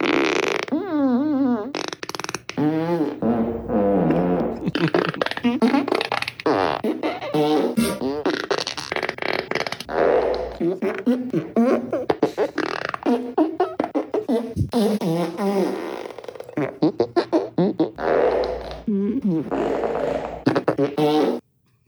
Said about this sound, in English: You remember my Super Fart remix? Because I did Fart of the Week and I had just like 40 farts that, that I recorded. For some reason, I put them back on the soundboard today.